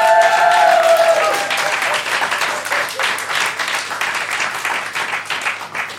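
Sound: audience round of applause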